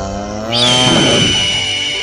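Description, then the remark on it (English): A lion roars once, loud, a deep rumbling growl that swells after a short lead-in and holds for over a second without fading, with no voices around it. “You will be called a lion.”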